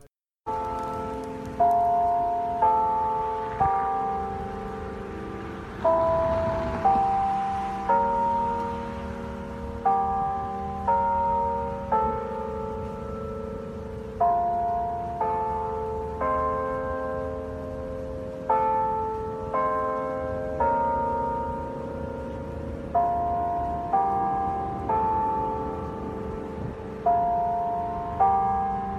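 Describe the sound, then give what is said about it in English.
Bells of the TCU chapel ring out in a steady peal, each stroke struck about once a second with long overlapping harmonic tones that hum and decay, sounding full with no voices. “As you prepare to depart, please take a moment and listen to the bells of TCU's chapel that provided comfort, healing, and peace of mind to Horned Frogs as war raged around the world.”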